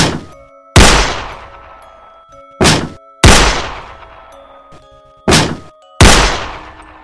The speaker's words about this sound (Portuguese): Corri até a porta e tentei arrombar. Foram 3 chutes e 3 disparos.